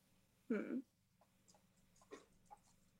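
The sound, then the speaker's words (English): A puppy breathing: one louder, throaty huff at first, then a few soft, irregular snuffly breaths over a faint steady background hum. “Oh, I think I hear the puppy breathing.”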